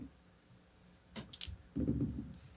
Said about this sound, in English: I need to stop rolling this dice.